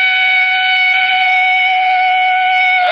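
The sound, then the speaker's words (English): A police car siren behind a car sounds a loud, steady wailing tone that holds one pitch throughout and dips slightly at the very end, with no voices over it. “Elwood, that siren. It's a police car behind us.”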